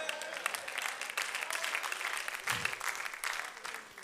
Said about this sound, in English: I think you ought to clap a little more for that. Get something more.